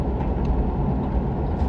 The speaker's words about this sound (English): Now there's a car coming.